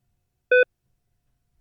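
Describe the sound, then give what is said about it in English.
A life-support monitor's electronic beep sounds twice, about a second apart, each a short steady tone with a clear pitch, fairly loud, with silence in between. “The thing is still beeping.”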